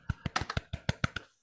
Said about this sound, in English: Yes, round of applause.